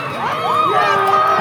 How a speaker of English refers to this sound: Neighborhoods erupted in cheers and honking horns. For the first time in Minnesota, a white cop is being held accountable for the killing of a black man.